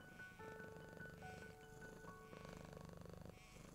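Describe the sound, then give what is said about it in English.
A cat purrs steadily, a soft rhythmic rumble pulsing throughout, with gentle sustained musical tones playing quietly underneath. No one speaks. “It is a known fact that the sound of the purring can lower your heart rate, lower your blood pressure, reduce anxiety, and put you in a state of total relaxation.”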